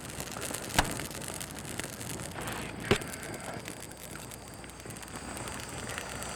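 A bonfire burns with a steady, soft hiss and rustle, broken by two sharp, loud pops a couple of seconds apart. Nobody speaks.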